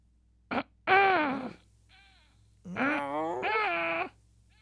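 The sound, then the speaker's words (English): A voice imitates throat clearing: a short catch, then a grumbling, voiced rasp and a longer two-part groaning clear-out, fairly loud, with no words spoken. “He would clear his throat and turn away.”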